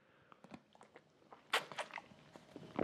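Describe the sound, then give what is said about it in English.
Someone takes a last drink before starting a rowing workout on a water rower: a quick run of soft clicks and gulping swallows, then a louder crackling burst like a squeezed plastic bottle, with a few faint crinkles trailing off. No one speaks. “Right, okay, one last drink before we start.”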